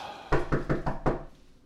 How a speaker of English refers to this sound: Okay, okay, I'm coming. Stop before you knock the door down. Jeez, you have some strength on you.